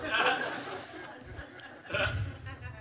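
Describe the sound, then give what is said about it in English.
A brief, breathy sneeze bursts out, with a second similar noisy burst of air about two seconds later, set against a low murmur of background sound. “Bless you.”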